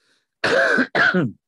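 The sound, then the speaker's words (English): Two quick, harsh, loud coughs in close succession, with no talking around them. “I'm sorry, Jesse, for coughing in your ear while you're doing the editing, mate.”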